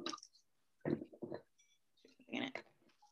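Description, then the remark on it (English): Wine gurgles and splashes through an aerator into a glass in three short, throaty surges with brief pauses between, ending in a faint trickle. No one speaks. “So I'm gonna go ahead and pour through my aerator into my glass.”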